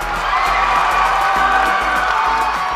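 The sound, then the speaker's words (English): A large crowd on a cruise ship cheers and applauds continuously at a farewell party for the departing cruise director, a dense wash of clapping with whoops and shouts rising throughout, loud and steady with no break. “A huge round of applause for one last party”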